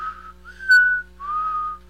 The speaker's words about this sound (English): Oh, yeah. I can whistle all different kind of ways. My oldest can whistle blowing out and sucking air in. I can do that.